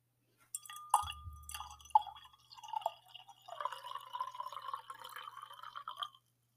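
Liquid pours from a glass decanter with a glassy clink at the start, then a steady gurgling stream and fine crackling bubbles fizzing for several seconds before stopping.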